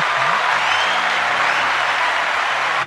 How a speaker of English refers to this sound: So happy birthday, I'm just going to all of those people. Give them an applause.